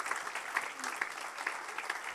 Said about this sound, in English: I think that needs a round of applause, guys, because that's you.